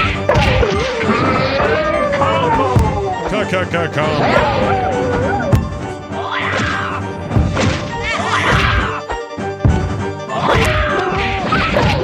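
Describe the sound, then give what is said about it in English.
Video game fighting sound effects of the character Jago fighting a dog character: a rapid series of loud whacks and smashing impacts mixed with character grunts and yells, over a steady musical background that carries on throughout. “But nonetheless, here is some sounds of Jago fighting in that game.”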